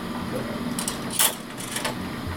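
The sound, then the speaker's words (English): An ex-technical service film processing machine, installed by ATEC around the late 90s, shuffles film along one position without picking it up, with a short run of dry mechanical clacks and rattles, one sharper clunk in the middle, over a steady low motor hum. “So actually, see, it didn't pick it up then, it just shuffled it along one.”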